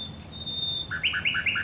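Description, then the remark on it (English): A nightingale sings: a long, thin sustained whistle, then a quick run of about five bright, rising chirped notes repeated in rhythm, clear against a low background hum. “It really is, I think, almost impossible to put the song of the nightingale into words.”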